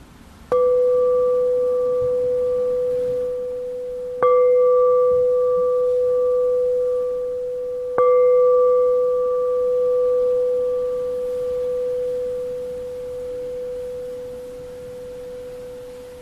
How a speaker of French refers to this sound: Puis voyez les transformations qui vont avoir lieu avec le son de la cloche ou après le son de la cloche. Transformation dans la posture, la respiration, l'état mental.